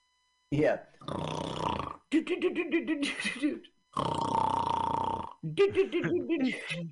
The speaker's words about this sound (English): Oh, Bionic snoring. They're gonna go into a bionic slumber.